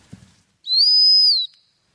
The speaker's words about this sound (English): And that's the stop whistle.